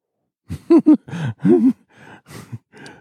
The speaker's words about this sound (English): I can hear Louis barking and then being told to shut up.